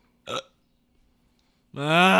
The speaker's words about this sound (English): Hiccups!